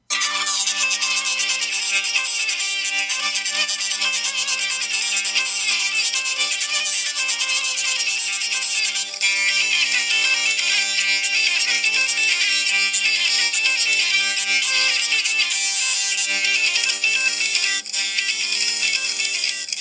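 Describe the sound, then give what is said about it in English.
A bowed wheel instrument, its wheel turning, plays a bright, nasal melody over a steady buzzing drone, loud and unbroken for the whole stretch, with no voices; in the quiet moments the click of the key fingerings can be heard. “So in the quiet moments, right, you can even kind of hear a little bit of the click of the fingering.”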